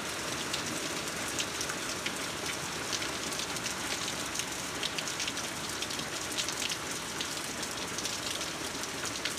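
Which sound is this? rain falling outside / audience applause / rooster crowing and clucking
rain falling outside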